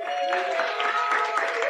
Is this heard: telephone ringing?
no